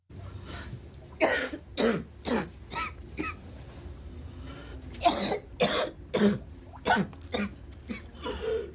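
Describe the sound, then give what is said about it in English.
A woman walking through her apartment gives repeated harsh, spluttering coughs in irregular bursts, about a dozen sharp hacks with brief gasps between them, fairly loud against a faint low background hum, while trying to curtail the stubborn, persistent cough with a cigarette. “Walking through her apartment spluttering, … attempts to curtail a stubborn, persistent cough with a cigarette.”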